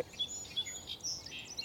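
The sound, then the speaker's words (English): A song sparrow sings faintly: three repeated high introductory notes running into buzzy, jumbled phrases and ending in a trill, with no voices over it. “So that one had three repeated introductory notes, some buzzy, hard to describe stuff, and then the trill.”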